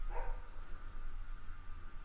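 A dog gives one short, fairly faint bark at the start, followed by low steady background hum and quiet noise. No one speaks.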